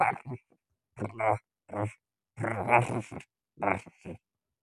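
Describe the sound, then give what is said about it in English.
A voice imitates a giant grasshopper with a series of five raspy, croaking vocal bursts, separated by short pauses, some longer and more gravelly than others, all fairly loud. “Well, not cooing, because it's a giant grasshopper and its noises are more like.”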